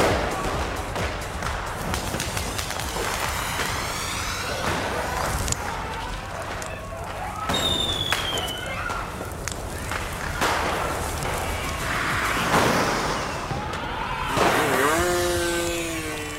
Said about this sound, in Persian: شهر شلوغ است و همه جا آتش روشن شده. انفجار ترقه ها فضا را غبارآلود کرده.